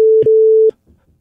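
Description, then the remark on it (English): A single loud, steady mid-pitched censor beep holds for under a second, with brief clipped bits of voice breaking through it, followed by faint, murmured speech. “They'll understand through the beeps.”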